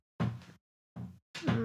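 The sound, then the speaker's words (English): A dog clawing at a door: three short, rough scraping bursts separated by brief pauses, each a dull, thumping scratch against the wood, fairly loud with no talking. “Yeah, my dog's clawing at the I've door.”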